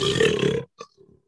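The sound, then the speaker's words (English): A person imitates a lion's roar with one short, loud, raspy growl that sounds rather like a belch, followed by a couple of faint breathy noises. “That awkward belch of a lion.”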